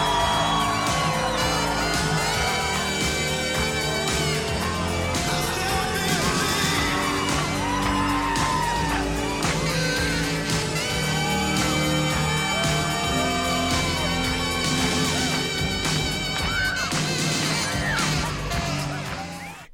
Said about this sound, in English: Which an oiled-up, ripped-as-fuck, shirtless saxophone player sings and plays to a raucous crowd on the boardwalk.